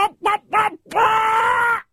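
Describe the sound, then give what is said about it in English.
A person imitates a chicken with their voice: three short, clipped clucks followed by one long, drawn-out squawk that holds a steady, fairly high pitch before cutting off. “Can you do a chicken noise?”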